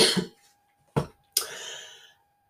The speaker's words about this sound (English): And I've just realised I don't have any water. I'm going to cough, so I apologise.